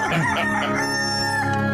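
A cockerel crows once, loud: a strained, rising call that holds a long, drawn-out note before trailing off. No other sounds accompany it.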